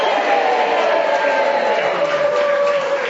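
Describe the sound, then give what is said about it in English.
An audience cheers, shouts and claps together on cue to make noise, a loud, steady roar of mixed voices and applause that fills the space without letting up for the full few seconds. “Up there, cheer, shout, clap. Make some noise.”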